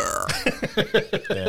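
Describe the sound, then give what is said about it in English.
A rapid series of about six short, throaty belch-like croaks, fairly loud, pulsing in a quick uneven rhythm with no talking. “There is a reply to your call. It sounds more like a belch.”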